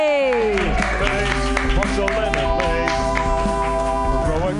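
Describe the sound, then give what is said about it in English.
A comedy show audience claps steadily throughout for the night's second comedian, the applause blending with loud, tonal walk-on music that begins with a sliding pitch and carries on underneath. “Clap wildly right now”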